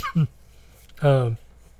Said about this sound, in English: what's annoying me about this cough is I was literally not coughing at all until I started recording this podcast. And then because I'm using my voice, it's like, no, screw you, man.